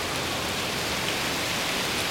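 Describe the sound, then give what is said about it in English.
Heavy, driving rain pours down in a dense, unbroken roar, loud, with a constant hiss of drops hammering a surface and no voices. “It's loud. It is driving rain.”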